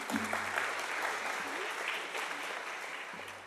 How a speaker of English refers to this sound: So please give a round of applause.